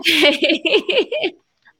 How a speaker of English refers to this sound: And, you know, my dog is barking in our background, my little dog here. Oh, it doesn't hear that much.